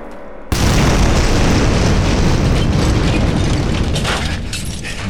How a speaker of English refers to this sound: It's a beautiful explosion. You ever blowed up a building before?